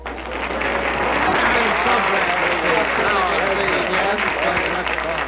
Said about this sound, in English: Applause.